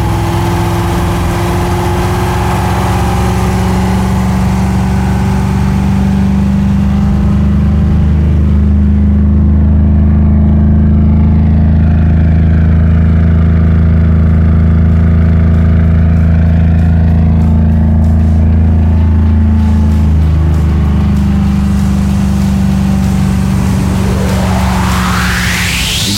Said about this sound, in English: An MGB modified by the factory to accept the Rover 3.5-litre V8 engine and a most desirable high-speed touring car. One of the very few post-war MG models not to be exported to America.